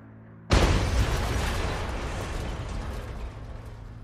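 sound effect, series of explosions

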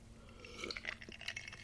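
food or drink, sipping a drink

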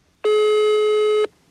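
signal or alarm, telephone ringing tone

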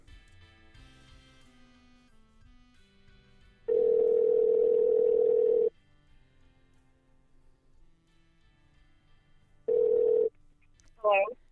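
signal or alarm, telephone ringback tone

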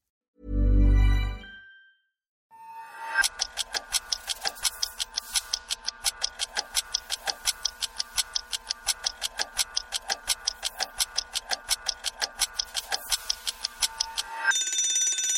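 signal or alarm, timer ticking and ringing

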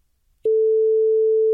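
sound effect, censor bleep

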